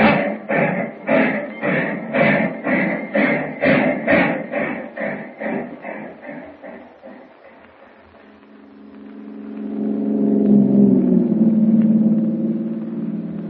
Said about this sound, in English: Train's starting. Brakeman's probably left the observation platform by now. Yes, he has. Here we go, on board. Up!